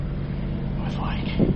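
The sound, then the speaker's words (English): Steady low engine rumble from inside a moving bus, with a constant droning hum and a faint murmur of voices mixed in. “Even though it wasn't a local, I'm in the bus.”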